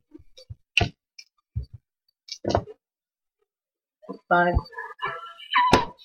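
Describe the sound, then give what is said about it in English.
Four dice clatter and tick across a hard tabletop in a few short, irregular bursts of sharp clicks and thunks, followed by a brief stretch of voices. “Believe it or not, on 4 dice, they got a 4.”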